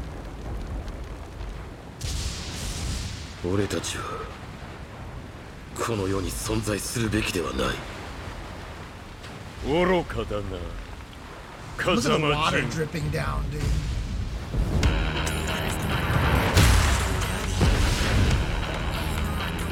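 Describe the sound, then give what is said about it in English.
Tekken 8 video game trailer audio full of booming explosions and heavy impacts, with bursts of voices and shouts between them, building to a loud, dense rumble near the end. “This is the Tekken 8 trailer.”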